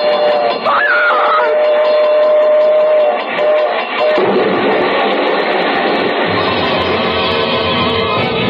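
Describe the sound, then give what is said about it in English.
A train roars past at a railroad crossing, a loud, continuous rumble and clatter with a brief shrill whistle-like tone early on, filling the whole stretch without any talking. “We're coming to the crossing. It's There's quiet a train.”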